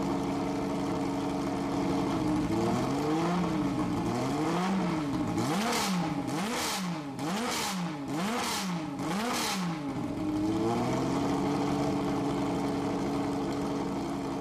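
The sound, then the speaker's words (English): A BMW M1 mid-engine sports car's 3.5-liter M88 inline-six engine with mechanical fuel injection idles steadily, then is blipped through a rapid series of sharp revs that rise and fall, before settling back to a smooth idle. Loud, with no talking. “So the M1, as I said, was a mid-engine car, and its engine was a 3.5-liter inline-six called the M88.”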